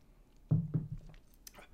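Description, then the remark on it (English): Mouth sounds of someone taking a sip of a drink: a couple of soft wet gulps followed by a brief airy slurp, quiet, with no talking. “Get a little sip in here before we get going.”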